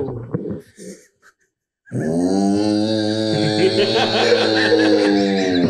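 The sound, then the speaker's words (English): A person imitates a cow with one long, low, droning moo lasting several seconds, loud and steady, after a few short vocal sounds and a brief pause. “Hey, you know how the cow sounds?”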